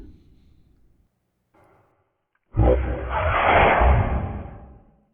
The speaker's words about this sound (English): you suddenly hear like a really deep inhaling noise. Oh no. And then just the loudest sneeze you've ever heard in your entire life.